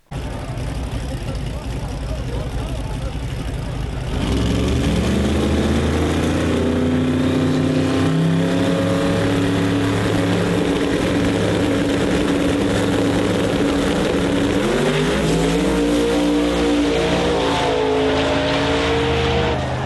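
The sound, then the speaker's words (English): Racing car engines roar loudly and continuously during a second-round race on a track, their pitch rising and dipping as they rev and shift gears, with the noise swelling after a quieter opening few seconds. “I mean, let's have a listen to the race here.”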